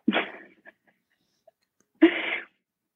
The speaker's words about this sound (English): Your joke made me sneeze, so I had to mute my mic.